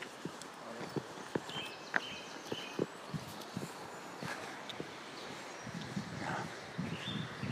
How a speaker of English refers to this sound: That was an elderly man jogging past.